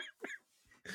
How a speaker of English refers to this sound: Sorry, I'm coughing now.